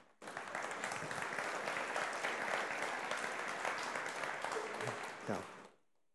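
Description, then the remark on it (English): An audience claps steadily for several seconds, a dense, even wash of many hands that holds at a strong level, then fades out abruptly at the end. “When you're clapping, I mean, I appreciate it, and I do.”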